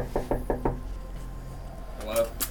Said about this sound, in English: This is the address the guy gave us for the UFO, so... we'll see how that goes. Yeah. You get to knock, not me.